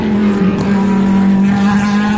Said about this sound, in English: And here come the Porsches, the 911s. They sound like an angry team of wasps.